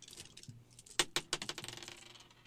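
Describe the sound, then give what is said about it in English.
Dice rolled during a game clatter across a hard surface, starting with a few sharp clicks and then a quick run of rattling taps that slowly fade. The sound is moderately loud, with no talking. “While he's analyzing that virus and counting his dice up.”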